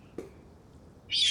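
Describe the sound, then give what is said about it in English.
After a short quiet stretch with a faint click, a voice lets out a loud, shrill, sustained screech imitating a bird of prey, which lasts to the end. “And I'm just like, whoa, excuse me, could you not screech like a bird? What is that?”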